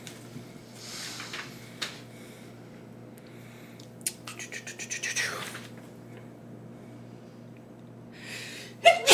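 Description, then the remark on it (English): A single sharp sneeze bursts out, preceded by faint rapid clicking and rustling against a low steady hum, with no one talking. “Bless you.”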